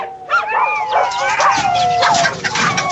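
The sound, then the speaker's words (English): Dogs bark and yip in quick, overlapping bursts, loud and continuous, mixed with high whining tones for the whole few seconds. “I'm going to bring the dogs down to the office with me.”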